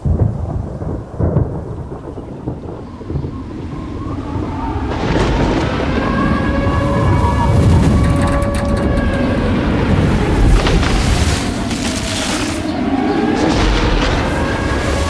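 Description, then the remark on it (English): Dramatic thunderstorm sound effects from a movie trailer: deep booming thunder rolls into a loud, sustained roar of wind and rain, with eerie rising whistling tones over the rumble. No one speaks. “So that's from the trailer Into the Storm.”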